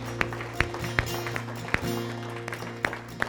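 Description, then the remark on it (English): Scattered hand claps from a church audience, applauding people stepping out of their seats to come to the altar, sharp and irregular rather than a full roar, ring out over steady sustained keyboard chords; no one speaks. “Really, come on, give them a round of applause as they're coming.”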